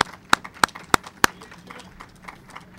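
Four loud, evenly spaced claps ring out, followed by a scattering of fainter, irregular claps that quickly trail off, like brief, thin applause from a small group.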